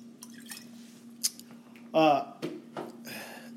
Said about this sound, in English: Sorry, you may have heard the water in the background here. I try to filter that out, but it didn't happen this time.